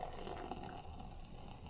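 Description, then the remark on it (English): Munich Dunkel, a 4% ABV German dark lager, is poured steadily into a glass, a continuous gurgling, splashing stream of liquid lasting the whole moment, with no talking over it. “And a pour.”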